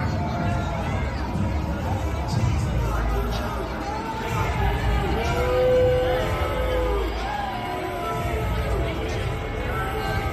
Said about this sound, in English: All right, so you get the picture. Trump sitting in his SUV, there's booing, there's jeering, fine. Not exactly a warm welcome, we can put it that way.